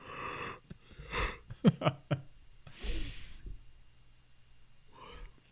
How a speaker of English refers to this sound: Because I could make myself yawn.